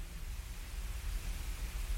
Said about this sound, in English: Desperately want to get rid of the hissing sound.